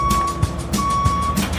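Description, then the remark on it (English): A dump truck's reversing alarm emits long, steady beeps over the heavy rumble of an engine at a construction site early in the morning, with some clunking noises mixed in. “Back up the dump truck!”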